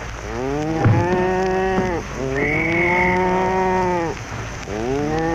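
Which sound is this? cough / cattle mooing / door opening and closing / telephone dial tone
cattle mooing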